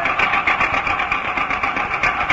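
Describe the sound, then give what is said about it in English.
An old car engine, started by hand-cranking after its magneto wiring was fixed, runs with a rapid, steady chugging rhythm, loud, with a rattly mechanical clatter and no voices. “How'd you fix that contraption? Oh, it was just the wiring in the magneto. I've studied up on engines.”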